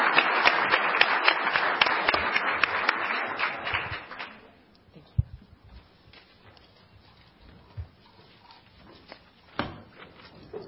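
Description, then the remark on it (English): Dense audience applause for the first panel of MPower Champions rings out for about four seconds, then fades into quiet with a few scattered claps, thumps and shuffling noises. “Another round of applause to our first panel of MPower Champions.”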